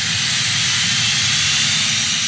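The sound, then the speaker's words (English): Jet engines roar with a loud, steady hissing whine over a low rumble, unbroken for a couple of seconds, with no one talking. “So now that our pre-flight is complete, let's push off the gate, start up those virtual podcast engines, and get ready for takeoff.”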